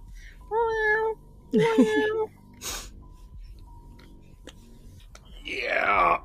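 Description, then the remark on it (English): A person's voice imitates a cat meowing: two drawn-out, fairly loud vocal meows with a brief breathy sound between, followed by a rising-falling whiny sound near the end. “It is raining cats and dogs outside right now, y'all. Meow.”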